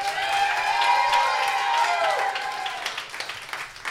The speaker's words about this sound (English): Real quick, round of applause.